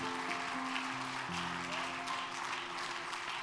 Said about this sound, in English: Give the Lord a good hand clap of praise tonight.